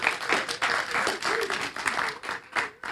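A crowd applauds the young people as they leave, a dense, steady patter of many hands clapping at moderate volume for a few seconds, with faint voices mixed underneath.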